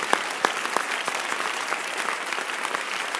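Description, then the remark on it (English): A crowd applauds steadily, many hands clapping in a dense, sustained patter with a few sharper claps standing out near the start. “The way you are clapping, God show that you need prayer.”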